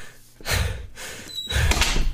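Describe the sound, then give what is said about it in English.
A heavy door shuts with a broad mechanical whoosh, followed by a short high beep and a second rumbling clunk as its battery-powered lock engages, fairly loud with no talking. “Oh, thank fuck the door locks are on batteries.”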